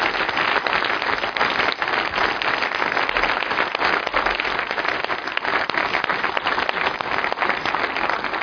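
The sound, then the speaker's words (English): A church audience applauds God during a morning service, steadily and loudly for several seconds, a dense wash of many hands clapping at once with no voices standing out. “So would you join me in just applauding God for His work through our church family?”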